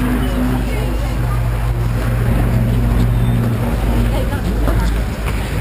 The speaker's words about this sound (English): I'm going up the hill today in this car here, which is a Lotus Evora. Now you know I've been up the hill in an Evora before.